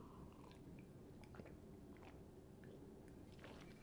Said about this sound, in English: I'm going to take a sip of water first.